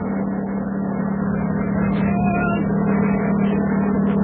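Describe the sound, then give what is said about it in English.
A helicopter bringing mail from the United States to Rockley Island drones as it approaches, a dense low hum with a rough, churning texture that holds at an even, fairly loud level throughout, with no voices. “Yeah, God, here it comes. Ahoy up there! Aboard the helicopter!”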